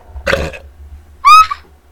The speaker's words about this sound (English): I tried to burp in your face.